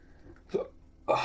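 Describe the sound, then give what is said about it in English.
Two sharp, abrupt hiccups about half a second apart, fairly loud, each a quick voiced gulp with no talking around them. “Oh my God, I just want these hiccups to go.”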